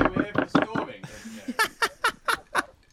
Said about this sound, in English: The most orderly storming. Yeah, bang on the door, door like maniacs.